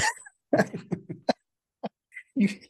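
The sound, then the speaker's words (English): Harsh coughing in a rapid cluster of bursts, then a single short cough and one more rough fit after a pause, with no talking. “You can't say push. Things like this to me now because it makes me cough.”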